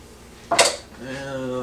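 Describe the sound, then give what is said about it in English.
Annie's Pizza Cheesy Rice being stirred in a cooking pot: a single short, bright scrape of a utensil against the pot, followed by a quieter, steady humming tone that lingers to the end. “Just kind of stir this up.”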